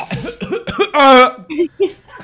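A voice imitates a coughing fit, with several sharp coughs in quick succession broken by a strained, voiced hacking sound in the middle.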